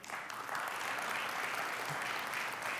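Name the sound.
audience hand clapping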